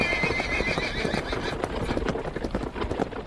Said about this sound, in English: Now the horses are not more than a mile behind. Now the wagon is quite close.